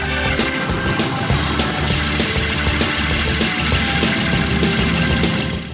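An organ is rocked back and forth so that its reverb springs clang and crash together in a loud, dense, metallic roar, with repeated jarring bursts over a sustained rumbling din and no voices.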